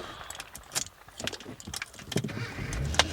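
Keys jangle and several sharp clicks and clunks sound as someone gets into a car in a parking lot, then a low rumble rises near the end as the engine starts. No voices.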